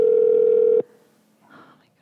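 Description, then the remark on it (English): A steady electronic tone of an outgoing Skype call, loud, holds for under a second and then cuts off abruptly, followed by a brief murmur of faint voices. “She's not answering. Shit. She doesn't recognize the Skype number.”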